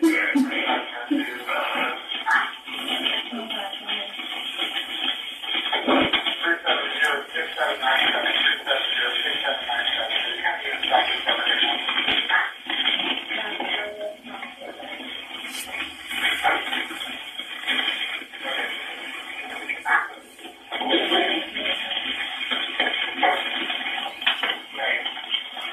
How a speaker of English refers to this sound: Listen to the static at the end here. Hear it? That is the infrasound phone.